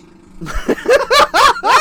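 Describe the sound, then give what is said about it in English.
A squeaky, fart-like noise in four or five quick, loud bursts, each bending up and down in pitch with a buzzy, stuttering quality, following a soft low rumble. “That one really sounded like a fart.”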